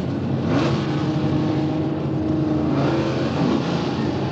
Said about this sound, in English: What was that? That's the volume. But what is that? Is that cars? Why have I got cars? Why have I got cars?